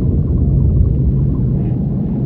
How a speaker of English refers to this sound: The weather suddenly shifts, dark clouds gather in a violent storm, and an underwater earthquake rocks the ruins of the old city.